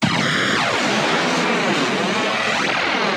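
The Emperor's lightning bolt sound effect, made from sounds by Ken Strickfaden, who built the equipment for the original Frankenstein movie: a loud, continuous crackle of electric energy, harsh and hissing, with whining tones sweeping up and down for about three seconds, no voices.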